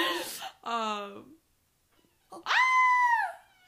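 A person lets out a loud, high-pitched scream of surprise as someone comes in. Two shorter squealing vocal bursts come first, then a brief pause, then a longer sustained shriek that rises and holds before cutting off.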